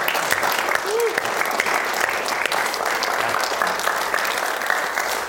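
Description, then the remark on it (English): A room full of people gives a round of applause for all the women, clapping steadily and loudly for several seconds, a dense wash of overlapping hand claps with no clear rhythm, sustained from start to finish. “But can we just give a round of applause for all the women?”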